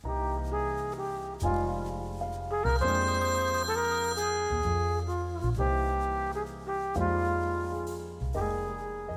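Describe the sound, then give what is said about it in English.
An outgoing phone call rings out with a melodic, chiming ringtone, steady tonal notes shifting in a repeating pattern for several seconds, fairly loud and clear, with no one speaking. “do you want to get Justin on the phone? Let's do it. Let's give Justin a phone.”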